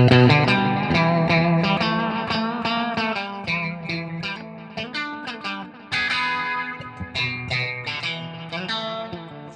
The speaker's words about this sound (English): But I clearly remember that my favorite part of the song was the instrumental section. I didn't know what a guitar solo was, but that beautiful reverb range, you know.